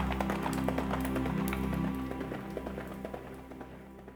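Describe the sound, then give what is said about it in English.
Steady rhythmic hoofbeats of a ridden horse clatter over a low sustained rumble, growing gradually fainter over a few seconds as the horse moves off. No one speaks. “Prince Edmund mounted his horse and rode away”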